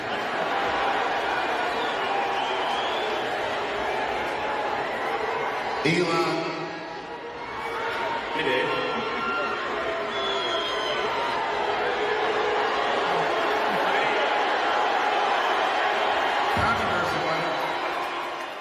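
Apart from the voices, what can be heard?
crowd cheering and booing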